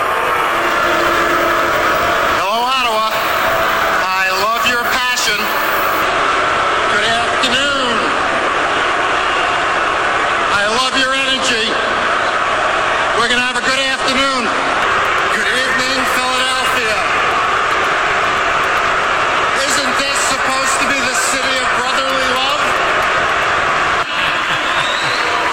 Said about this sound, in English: But before we go, give me the Bettman getting booed from probably some random draft. Here's Commissioner Gary Bettman.